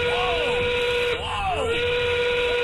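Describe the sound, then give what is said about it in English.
A loud, steady five o'clock whistle on KKFN radio in Denver, powered by Smart Local Union 9 sheet metal workers, holds one bright pitch for the whole time while voices whoop and yell over it in rising and falling swoops. “5 o'clock whistle, powered by Smart Local Union 9 sheet metal workers.”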